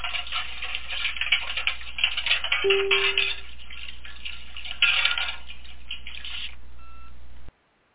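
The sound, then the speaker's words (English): A clock ticks steadily and briskly for several seconds, fairly loud, with a brief low tone partway through, then stops abruptly. No one speaks. “And it before we get into that, the clock is reminding me that it is time for a little housekeeping.”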